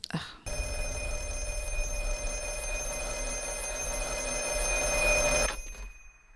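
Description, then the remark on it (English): A telephone rings loudly in one long, continuous electronic trill lasting about five seconds before cutting off abruptly, with no talking over it. “Wait, I think there's another phone call?”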